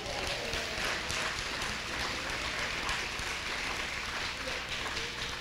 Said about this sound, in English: Tell the Lord thank you. Thank you. Clap your hands.